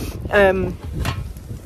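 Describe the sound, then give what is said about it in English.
Steady wind buffeting the microphone outdoors in a garden, a low rumbling, hissy noise that swells and dips unevenly throughout, with a brief tonal, voice-like sound rising above it early on. “And it's a bit windy, so I'm probably going to end up having to re-record this anyway, because it's all going to have wind noise in it and all of that kind of stuff.”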